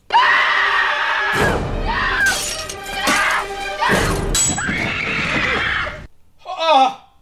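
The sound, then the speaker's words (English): A person lets out a long, loud scream amid crashing and shattering sounds like breaking glass, with a brief, sharp high-pitched cry rising at the end. “That's a good scream.”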